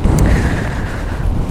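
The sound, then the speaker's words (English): Strong wind buffets the microphone by the sea, a loud, continuous low rumble with constant roaring turbulence and a faint thin whistle running through it, with no voices. “And I've got a really windy, rough day, so the fast shutter speed should be able to catch some of that sea movement, maybe.”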